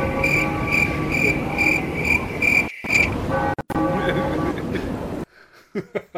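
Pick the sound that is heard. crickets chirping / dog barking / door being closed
crickets chirping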